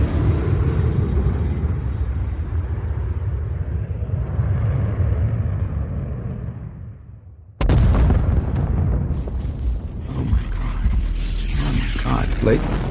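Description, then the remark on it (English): A heavy, steady jet roar builds and then fades, broken by a sudden loud explosive blast that rolls into a sustained crackling, rumbling din, as an Air Force fighter jet crashes and explodes into Jericho Mountain. “I don't want to alarm anyone, but I'm clearly a bit rattled here, and just I watched what appeared to be an Air Force fighter jet just crashing and exploding into Jericho Mountain.”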